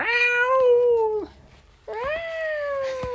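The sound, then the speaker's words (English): A voice imitates a frightened cat with two long, drawn-out meows separated by a short pause, each wavering and falling in pitch, loud. “You meow like a cat?”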